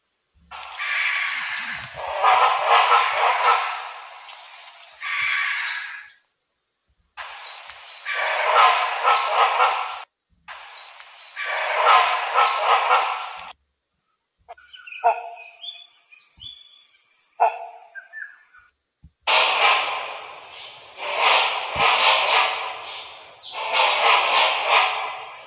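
Great hornbill giving loud, harsh roaring calls with a barking, crackling edge, delivered in several long bursts separated by short pauses, without any talking.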